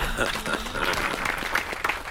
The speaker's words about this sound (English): Very good. Yeah, isn't it really? I think it's worth the applause.